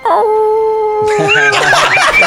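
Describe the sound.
A person imitates a wolf howl during a tabletop role-playing game, a long, steady, loud wail, which breaks after about a second into rougher, wavering howling amid noisier overlapping vocal sounds.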